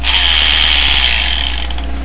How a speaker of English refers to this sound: So what I'm going to do is I'm going to spin the Wheel of Manga, and whatever number it lands on, that's what we're reviewing for the next episode of the Spark and Manga Review.